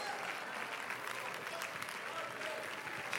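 A church audience claps their hands to the Lord in worship, steadily, a dense wash of many hands with no clear beat, holding an even loudness throughout with faint voices mixed in.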